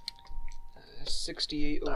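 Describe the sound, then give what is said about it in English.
Dice clatter across a tabletop in a quick burst of sharp clicks during a luck roll in a game, followed by indistinct voices talking over the tail end. “Quite an inconvenient spot for dice.”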